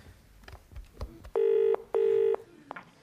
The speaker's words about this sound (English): Oh. All right, Angela, get me Legrand on the phone.